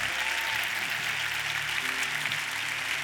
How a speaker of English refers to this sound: And the rest of us, we want to cheer and celebrate them. So if you're standing up, come out of your seat, come on down to the altar. Let's give them a hand. Come on now.